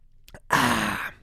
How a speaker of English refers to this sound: So I'm going to sip coffee real quick.